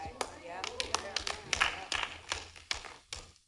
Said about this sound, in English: I lay aside what I love. That's about right. Five people clap. That's about right.